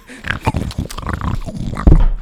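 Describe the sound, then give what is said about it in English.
A person makes loud, wet grunting and snorting noises, imitating a pig slurping and chomping at a trough, with a burst of harsher snorts near the end. “You're in your car and you're out loud going, like, I wonder what a pig sounds like eating from a trough, and then you do that.”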